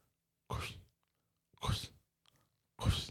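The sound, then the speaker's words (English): Three short, breathy crunching bursts made with the mouth, imitating footsteps crunching through deep snow, spaced about a second apart in an otherwise quiet setting. “We'll imagine that's snow noises.”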